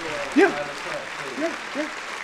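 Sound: applause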